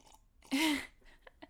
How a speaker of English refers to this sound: As you slurp, I'm finishing your coffee.